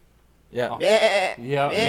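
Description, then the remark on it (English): A human voice imitates a doe deer's bleat: two nasal, wavering bleats, the first longer, rising loud after a brief quiet start. “And like I've heard doe that sound. I thought they were sheep.”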